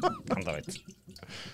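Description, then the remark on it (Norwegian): Water sloshes inside a bottle, making a rough, rushing splash meant to mimic a waterfall, broken by brief pauses, while voices talk over the start. “Skal du lage fossen, selv om det store fossen? For det sånn det høres ut.”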